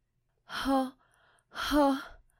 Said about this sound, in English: Those were good sex noises. Good job. Thank you so much. I put effort into it. She practiced.